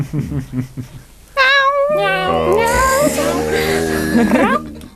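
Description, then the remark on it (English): Brief talking gives way to several people's voices meowing like cats, loud, with drawn-out, wavering meows overlapping for about three seconds. “Why did we meow? Meow.”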